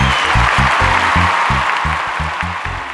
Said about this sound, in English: Seriously, people, hold the applause. Hold the applause for later.